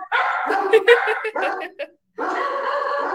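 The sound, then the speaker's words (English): Puppy dogs bark and yip in quick, overlapping bursts, fairly loud, then a brief pause before a sustained stretch of shrill, high-pitched yapping. “Puppy dogs.”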